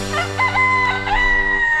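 A rooster crows loudly and close by, one long strained cock-a-doodle-doo with a rising and falling pattern that fills the whole moment, with no talking over it.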